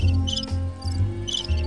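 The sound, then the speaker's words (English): A cricket chirps in quick repeated bursts, bright trilling pulses recurring every half second or so, set against a steady low hum with no talking. “Although the cricket sound, that's appropriate.”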